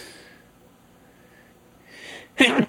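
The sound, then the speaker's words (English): A single loud sneeze bursts out at the very end, preceded by a couple of soft, breathy inhales in otherwise quiet surroundings. “Sorry, I have to sneeze here.”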